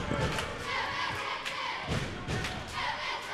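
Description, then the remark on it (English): A crowd at an Aggies basketball game roars steadily and loudly as the Aggies lead 23-11, a dense wash of cheering broken by a few heavy thumps and thuds throughout. “Crowd's making some noise.”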